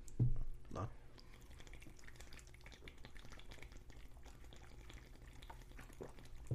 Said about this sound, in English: Before I hit play, though, cheers. Cheers, my man. This is how you really chug, bro.